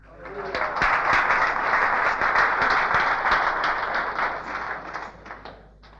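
A crowd applauds steadily for about six seconds, a dense wash of many hands clapping at moderate loudness, swelling quickly at the start and easing slightly toward the end.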